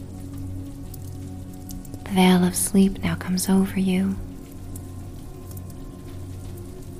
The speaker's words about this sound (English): The rain trickles down the windows that are covered with ivory lace curtains.